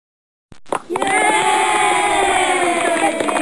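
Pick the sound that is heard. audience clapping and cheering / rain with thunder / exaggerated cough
audience clapping and cheering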